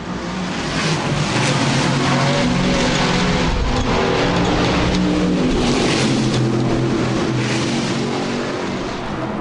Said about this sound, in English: In fact, I'm standing just at the back of the pit area, and I can hear the cars clearly all the way around the circuit, even though the furthest point is nearly 2 miles away.